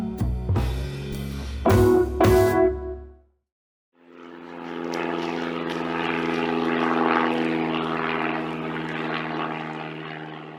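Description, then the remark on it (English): After a brief burst of music and a moment of silence, a propeller airplane drones steadily overhead, its throbbing engine swelling slightly and holding loud until the end. “Hey, that sounds like the plane is here with episode 12 of the Jazz at Noon podcast.”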